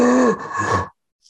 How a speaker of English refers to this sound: It's heavy, but not like stone. It's splintery, and it's followed by a deep groan, and then a kind of panting noise. Panting? Yeah. Labored, but deep breathing.